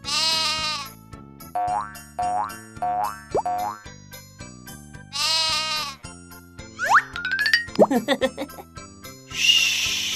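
A sheep bleats twice, a short wavering baa near the start and again midway, over a bouncy electronic beat full of springy boing and sliding cartoon sound effects.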